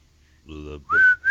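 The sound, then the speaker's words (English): A short hummed note gives way to a person whistling a quick tune: two clear, fairly loud whistled phrases that slide up in pitch, with a brief break between them. “You know, I can't whistle the.”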